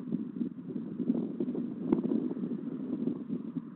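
A steady, low rumble of truck traffic drones on without pause, a dense roar with faint fluttering texture and a brief louder swell near the middle, no voices over it.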